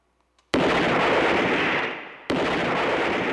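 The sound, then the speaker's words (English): Two loud revolver gunshots, each striking with a sharp crack followed by a long, dense roaring decay, the second about two seconds after the first, with no voices present. “And I fired at it with my revolver.”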